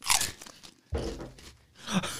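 Three loud crunching bursts of someone biting and chewing potato chips, each a crisp, brittle crackle separated by brief pauses, with no talking.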